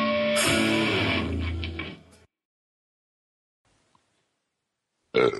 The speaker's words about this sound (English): Excuse me. Geek burp.